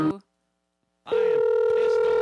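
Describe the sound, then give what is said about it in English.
A brief sound cuts off into a second of silence, then a loud, steady electronic Skype calling tone rings out and holds, continuous, until the end, as a phone call is placed. “We're going to go to our fabulous Skype phone call”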